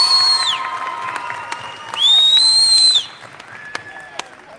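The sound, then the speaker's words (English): A crowd applauds steadily for a group of people whose names were just read out, with high whoops and whistle-like cheers rising over the clapping in two loud bursts before the noise eases off. “Please give them a big round of applause for them.”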